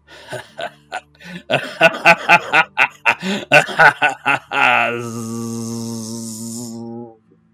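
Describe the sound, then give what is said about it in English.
Wasps buzz in a steady, fairly loud drone for a couple of seconds, right after a burst of rapid, choppy laughter; a large cluster of wasps squeezing through a small crack in a boarded-up window in a city under a smoggy sky. “It fades to the buzzing sound of wasps.”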